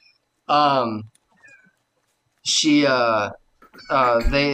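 A female cat named Nibbler meows three times, each call loud and drawn out with a wavering pitch, separated by short pauses of near silence.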